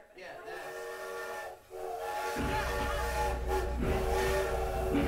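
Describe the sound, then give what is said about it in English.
A train whistle sounds in a long, steady harmonic blast, briefly pausing, then continuing as the deep, loud rumble of a rolling train builds up underneath it. “All aboard!”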